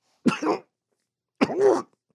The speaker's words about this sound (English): He paused for a coughing fit.